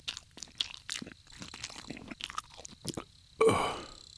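Wet, crunchy chewing of a bite of a cooked slab of backstrap by a fire, with irregular smacking and tearing bursts, ending in a louder ripping crunch as another bite is torn off.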